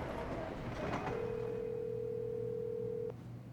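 A steady electronic phone tone sounds for about two seconds over a low background hum, then cuts off abruptly, like a dial tone or a single ringback tone on a line, for a phone call at night.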